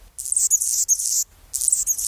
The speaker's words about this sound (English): On a chilly February morning near Seattle, with the temperature hovering below 40 degrees, a bird is singing lustily. And not just any bird. It's a hummingbird, a male Anna's hummingbird, whose throat and crown flash iridescent rose.